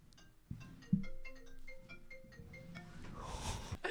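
An iPad without phone capabilities rings in the room, a quick melodic run of bright electronic notes repeating over a few seconds, with some low rumbling room noise underneath and a brief burst of hiss near the end.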